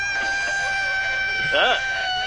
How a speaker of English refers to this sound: Wait, so that's a sea lion, not a seagull? That is a sea lion.